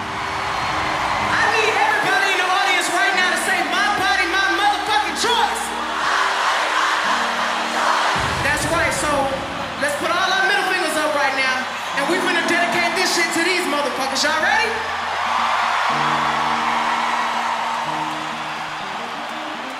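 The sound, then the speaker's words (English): A festival crowd at Glastonbury Festival, during a performance last June, cheers and whoops loudly and without a break, rising yells and shouting voices piling over each other while low sustained tones hum underneath. “was performing at Glastonbury Festival when she stopped to let the crowd know how she was feeling.”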